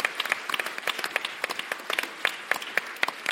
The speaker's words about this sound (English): Well, I think, of all things, Dave Ansell absolutely deserves a massive round of applause. For him. Thank you.